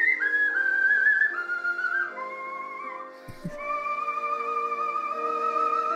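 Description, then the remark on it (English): A melodic whistling performance, clear, with sustained wavering notes sliding between pitches over soft instrumental backing, briefly pausing midway before the tune resumes. “Something like a bit of whistling.”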